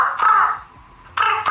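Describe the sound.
A woman's voice imitates a bird, letting out two loud, raspy crow-like caws separated by a short pause, with no other talking.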